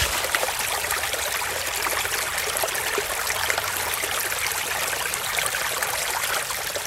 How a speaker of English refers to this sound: I recorded water from a creek near my house. It's just so soothing. I love, like, wandering through the creek.